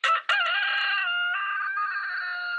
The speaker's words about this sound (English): You got a llama? Rooster. I have alpacas and I have a rooster.